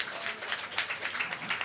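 An audience gives another round of applause, a dense wash of many hands clapping at once, steady and fairly even throughout the short stretch with no one speaking over it.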